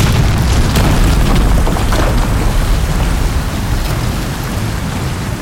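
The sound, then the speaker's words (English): A heavy, continuous roar of water pouring down in torrents as though from a great height in underground tunnels after an explosion, with a deep booming rumble underneath and a steady hiss throughout. It stays loud the whole time, easing slightly toward the end, with no voices. “We could hear the water pouring down as though from a great height.”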